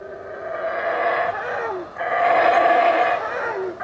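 Animals roar and howl in two long, rising-and-falling waves of sound that swell to full volume and overlap, ringing out with an echoing quality and no voices: males calling to each other across a South American rainforest canopy, a sound that can travel for miles.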